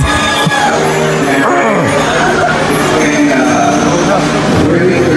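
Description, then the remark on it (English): A loud, dense crowd roars continuously, with overlapping shouts and whoops rising from the din, as fans react to two men proposing to each other on stage. “Listen, the crowd's gonna go nuts. Listen to that fan reaction.”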